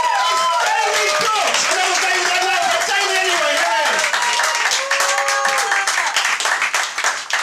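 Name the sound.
audience clapping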